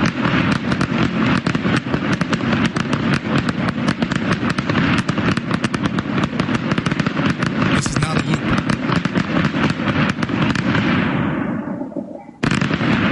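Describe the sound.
A dense, rapid barrage of firework bangs, set off at 5:41 in the morning on Monday, February 27th, crackles nonstop for over twelve seconds, loud and continuous like a grand finale, then cuts off abruptly. A man briefly speaks over it.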